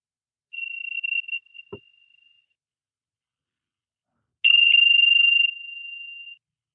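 A bell is struck twice at the close of a yoga session, each time a clear, high, sustained ring that fades out over a couple of seconds; the second strike is louder. A soft knock falls between them, and no one speaks.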